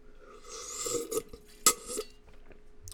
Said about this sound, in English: Water drinking ASMR, you ready?